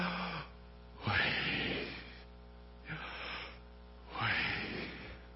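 Slow, deep breaths drawn in and let out, a few long airy rushes with short quiet pauses between them, no talking.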